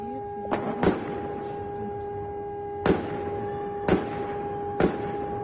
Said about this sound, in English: Gunshots were reported to have been fired as the blaze took hold of the jail in the capital, Tehran.